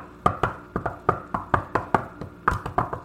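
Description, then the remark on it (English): A person imitates an annoying knock on a door: a rapid, insistent run of about ten sharp knocks on a hard surface, fairly loud, in a slightly uneven rhythm with no voices. “She does this annoying knock.”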